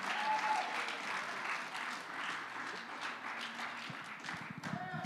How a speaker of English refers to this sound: Oh, if you believe that, clap your hands and make a joyful noise unto the Lord.